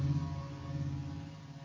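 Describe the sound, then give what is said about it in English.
A mosquito spraying truck drives past with a steady low engine drone, a strong hum and harmonic tones, holding fairly level with a slight fade toward the end. No talking. “there's a mosquito truck going by”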